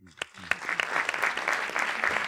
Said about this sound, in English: Applause for that.